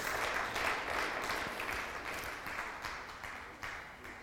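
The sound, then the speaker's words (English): An audience applauds the living God, a dense, steady wash of many hands clapping that holds strong for the full few seconds with no voices rising above it. “Let's put our hands together and applaud the living God.”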